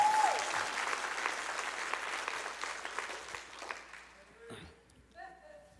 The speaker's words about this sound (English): Give the Lord one more clap offering while I get some tissue.